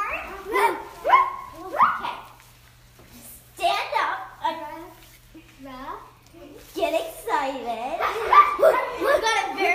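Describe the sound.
Several dogs bark in quick, overlapping bursts, with yips and whines mixed in, while voices talk over and between the barking.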